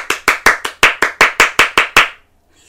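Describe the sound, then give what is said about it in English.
Hands clap about eleven times in a quick, even rhythm, each clap sharp and fairly loud, before the sound stops and falls silent. “And while you've got your hands clapping, give yourselves a big round of applause for excellent listening and excellent gaming.”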